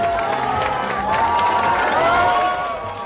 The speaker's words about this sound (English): Its products continue to delight customers around the world. You can hear some of them cheering excitedly at the opening of a new Apple store in the Chinese capital of Beijing.